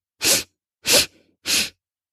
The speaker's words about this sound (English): Let's do three more. Ready? Three quick sniffs.